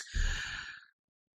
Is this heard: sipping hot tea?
yes